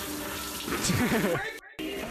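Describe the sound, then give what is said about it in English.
Shower water runs in a steady hiss as a man showers wearing regular sunglasses, with a voice briefly rising over it midway; the spray cuts out for a split second near the end, then resumes. “Different shower clip. He showered with regular sunglasses on.”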